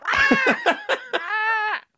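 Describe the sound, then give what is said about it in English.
A voice imitates a chicken squawking: a quick run of choppy clucks, then one drawn-out squawk, fairly loud. “And he squawked off.”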